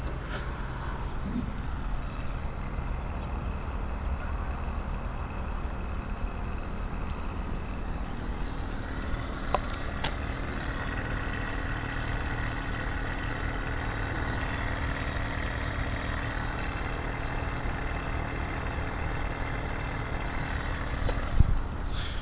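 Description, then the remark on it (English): A steady, low mechanical hum drones on without a break from a car just parked after arriving home, its engine off but still warm, with faint tonal whines riding over it and a brief soft knock near the end. No one speaks. “Something is humming inside the car, but the car is off, and the people have just arrived home, so the car is still warm.”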